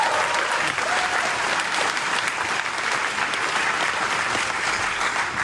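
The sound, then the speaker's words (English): An audience claps steadily and densely for several seconds, a continuous wash of many hands with no talking over it. “There's that clap.”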